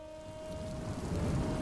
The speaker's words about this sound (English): Seriously? Rain? Now? How am I supposed to be broody and introspective under these conditions? I guess this is what I get for recording this whole thing outdoors.